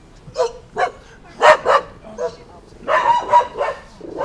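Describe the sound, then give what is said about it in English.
Labradoodle dogs bark in quick, repeated bursts, loud, with short yips between the barks and a voice speaking partly underneath. “Sorry, we're dog wrangling.”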